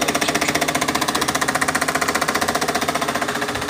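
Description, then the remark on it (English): A Tassimo coffee machine runs with a steady, rapid mechanical pulsing, a loud buzzing drone that throbs about a dozen times per second, with no voices. “The coffee machine there, the Tassimo, kind of got in the background, but the video was basically overplaying all over or whatever.”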